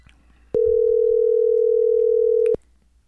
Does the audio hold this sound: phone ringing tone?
yes